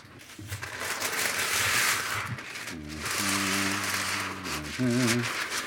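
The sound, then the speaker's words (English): Continuous crinkling and rustling of parchment paper being unrolled and handled, loud and steady, with brief low voiced murmurs partway through. “We're gonna need some parchment paper.”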